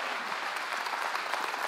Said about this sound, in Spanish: Entonces quiero que les den un aplauso a todos. Gracias por ayudarme.